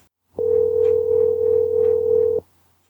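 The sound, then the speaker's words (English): A single steady electronic telephone ringing tone, heard while placing a call, holds for about two seconds and then cuts off, heard clearly on its own with a faint low hum beneath it. “Oh, it's a proper phone and everything.”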